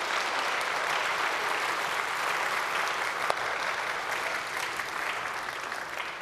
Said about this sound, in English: Good morning once again. We give your kids a round of applause. They really did a good job this morning.